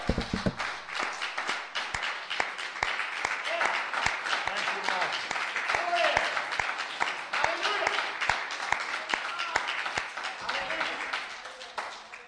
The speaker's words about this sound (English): Amen. Let's give him one more hand clap of praise.